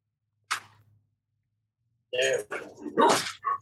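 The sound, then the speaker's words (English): Dogs bark at another dog on the other side of a fence: one sharp yap, a pause, then a rapid run of four or five loud, overlapping barks. “So, oh boy, my dogs are. Hold on one second.”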